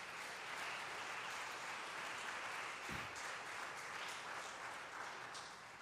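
audience clapping hands

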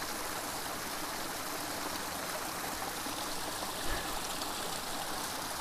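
creek water flowing

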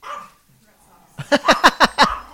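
dogs barking

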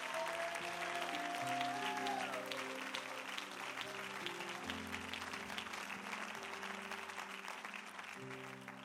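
audience hand clapping

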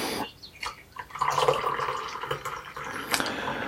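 tea being poured out

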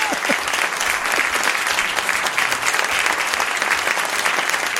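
applause sound effect clip

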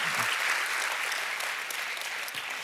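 round of applause

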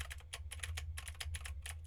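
typing on mechanical keyboard

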